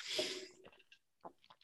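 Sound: chewing ice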